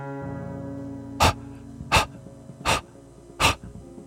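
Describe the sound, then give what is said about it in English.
A beagle puppy's wet, rapid, breathy panting comes in four distinct huffs, evenly spaced, over a steady low humming tone. “A wet, rapid breathing. Waiting for me at the door to City Hall. What she had been fleeing from. The beagle puppy.”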